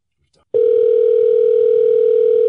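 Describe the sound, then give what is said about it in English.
A loud, steady telephone ringing tone at a single mid pitch holds unbroken for about two seconds, following a faint brief click at the start, as an outgoing call is dialed. “Two ringy dingies.”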